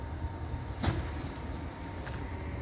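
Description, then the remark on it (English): A car door being opened and closed clunks once against a steady background of engine and road rumble, with a fainter click or shift a moment later, with no talking. “This is POC. While he's opening and closing the door”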